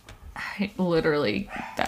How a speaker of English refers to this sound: Oh, one of the dogs just screamed.